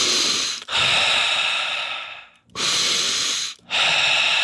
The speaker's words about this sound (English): Breathing.